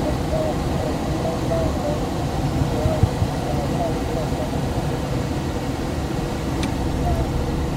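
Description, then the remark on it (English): A steady rushing roar of airflow and low rumble as a glider's air brakes come up above the wing on final approach, spoiling the airflow for a steep descent, buffeting in the slipstream, holding at an even level with no other distinct sounds. “Is that the air brakes coming on”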